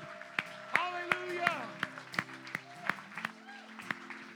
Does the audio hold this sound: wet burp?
no